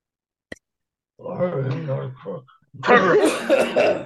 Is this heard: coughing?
yes